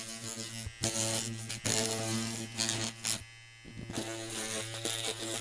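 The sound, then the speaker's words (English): A small electric nose hair trimmer, held right next to a microphone with the edge of a piece of paper to make a sound effect, buzzes steadily with a low hum, broken by several sharp bursts of snipping and clipping as it catches; no one speaks. “Oh, and it made the greatest sound of snipping and clipping that.”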